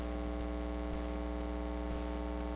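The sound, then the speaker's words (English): A steady electrical mains hum drones continuously with a faint static hiss over it, holding at an even, moderate level throughout with no voices or other sounds. “We're working on the hum here.”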